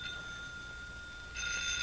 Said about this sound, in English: Aren't you going to answer it? Jim, that's your phone. It wasn't that I didn't hear it, but who could be calling but Laurie, and how could I talk to her with the manager of the bank standing over me? Well, if you won't answer it, I will.